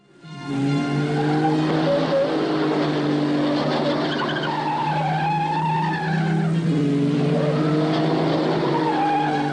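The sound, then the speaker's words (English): Race cars roar steadily as they come round a tight corner at Mount Panorama, Bathurst, their tires squealing in long, wavering high-pitched shrieks that rise and fall over a loud, continuous engine drone, with no one speaking. “Tires screaming as they come round the tight corner.”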